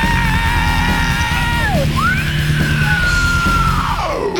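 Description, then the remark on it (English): A person lets out two long, high-pitched screams, the first trailing downward before a brief break and the second sweeping up and sliding down at the end, loud over a dense, steady backing. “Let me hear you scream.”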